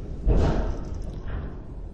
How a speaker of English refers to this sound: Just got one door. Okay. The wind caught the other one, huh?